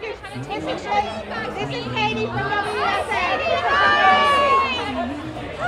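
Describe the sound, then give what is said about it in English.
A crowd of alumni at a reunion chatting at once as they catch up at tables marked with their graduation years, a steady, lively babble of overlapping voices with occasional brighter exclamations and laughter rising above the hum, no single speaker standing out. “alumni stood around catching up and meeting at tables with their graduation years.”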